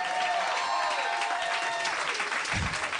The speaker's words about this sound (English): Oh, everybody clap.